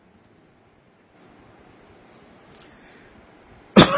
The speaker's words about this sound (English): The coughs and whatever don't go along with it.